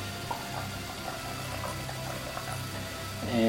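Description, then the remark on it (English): Liquor and lemon-flavored seltzer pour steadily into a glass to make a highball, a continuous splashing trickle with faint bubbly fizz, ending in a brief louder rush and a rising gurgle as the glass fills. “So let me top myself off here.”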